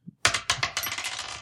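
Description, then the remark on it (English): Dice tumble across a tabletop in a quick burst of hard, rattling clicks, a few sharp bounces trailing into lighter clatter as they settle, with no talking. “That's going to take a roll.”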